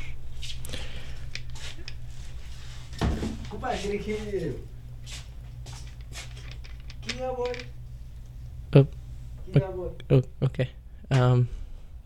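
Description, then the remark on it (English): Clattering, rustling and clicks of a janitor coming into the room and collecting the trash, with a faint muffled voice in the background, followed by a few soft thuds as he closes the door. “He's collecting the trash.”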